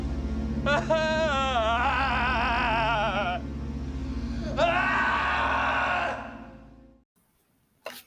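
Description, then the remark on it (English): A badly acted movie scream: a long, wavering, overdone cry followed by a second shorter wail, both loud over a steady low rumble that cuts off abruptly. “It was just a horribly done scream, and I'm actually going to play it for you.”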